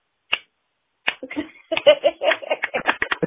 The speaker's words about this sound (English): And this is my slow clap.